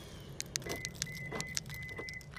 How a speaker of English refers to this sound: Oh, I need to unlock my car. I'm driving to...